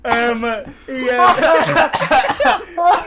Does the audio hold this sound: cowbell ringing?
no